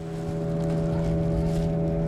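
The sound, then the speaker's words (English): A boat motor drones steadily as the boat, loaded with about a dozen large sacks of jagua, heads upstream on a river: a constant low engine hum with strong tonal harmonics, with a wash of water and wind noise and no voices. “The men load about a dozen large sacks of jagua onto a boat and head upstream.”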